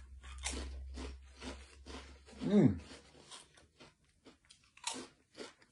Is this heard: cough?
no